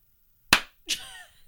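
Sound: single hand clap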